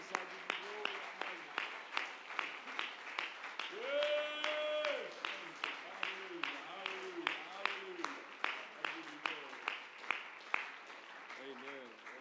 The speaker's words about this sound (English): If that's your prayer right now, would somebody clap your hands and would you shout unto God with the voice of triumph? Would you shout unto the Lord with the voice of triumph?